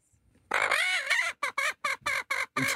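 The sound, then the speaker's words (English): A laughing-chicken sound effect: a loud, drawn-out chicken squawk gives way to a quick series of six or so clucks in a bouncy, laugh-like rhythm, clear with no talking. “That's the laughing chicken, sorry.”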